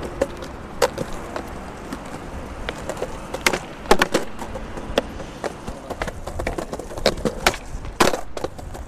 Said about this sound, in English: And that was a young lad riding on a skateboard.